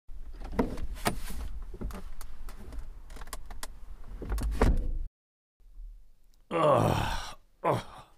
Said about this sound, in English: Christ, my back hurts getting in this car.